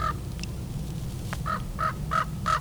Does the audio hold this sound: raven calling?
yes